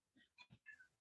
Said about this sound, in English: Is that Rocco? No, it's your cat.